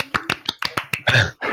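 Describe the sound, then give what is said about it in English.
A quick run of about six sharp hand claps at an even pace, followed by a brief, denser flurry of clapping. “Well clap.”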